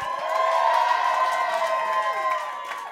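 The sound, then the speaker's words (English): A crowd cheers loudly and steadily, with whoops and shouts rising over a bed of clapping for the full few seconds, energetic, as the audience votes for comedians Jane Hayes and Courtney Warner in a comedy competition. “If you want to see Jane Hayes in the finals, make some noise. And if you want to hear more jokes from Courtney Warner, clap your hands.”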